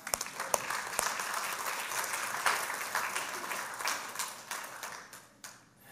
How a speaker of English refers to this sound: You can clap. You can clap.